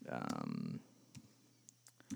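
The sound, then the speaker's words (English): A short voiced sound opens, then a handful of soft, sparse clicks follow, like scattered keystrokes on a computer keyboard while searching online for author John Philip Newell, faint against a quiet background hum. “You can hear me typing.”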